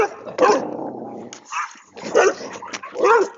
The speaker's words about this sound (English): Oh, as I say that, he growls at my dog.